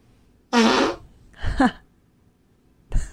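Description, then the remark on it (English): A loud, raspy fart from a woman in spandex rips for about half a second, followed by a shorter sputtering one and then a brief final puff. Clear, with no talking. “Girls rubbing bananas on her asshole and farting in the spandex.”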